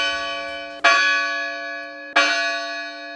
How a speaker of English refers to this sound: During the gambling times, you can hear the sound of winning, losing, and then the sound of the Murdoch arriving in port. The bells chime, letting you know that landing is occurring.